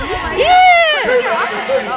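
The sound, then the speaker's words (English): A group of students attempts a cheer, their overlapping voices rising and falling in pitch without coming together, a ragged, fairly loud burst of shouting and chatter lasting about two seconds. “They're trying to cheer, but it's not really working.”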